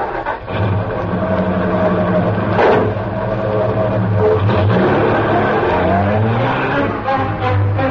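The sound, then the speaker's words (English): A large sedan's engine revs up as it pulls away with its windows closed, the motor rising and shifting pitch as it accelerates, loud and steady throughout with no voices. “The car was a large sedan.”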